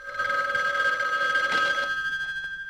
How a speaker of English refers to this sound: A phone starts to ring as we crossfade to a hallway.